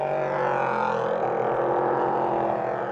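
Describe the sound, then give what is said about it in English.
Loud, continuous engine roar from race cars accelerating away from a pit stop, the number 24 car with the number 4 car right behind, a dense droning snarl that fills the whole stretch without a break, steady, with no voices audible over it. “Well, away goes the number 24 car, with the number 4 car, I think, right behind him.”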